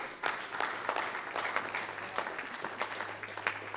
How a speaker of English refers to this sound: Clap your hands.